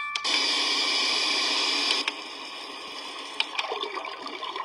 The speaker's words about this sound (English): Oh, there's the brook. It does sound like piss. It does sound like piss. I heard the piss.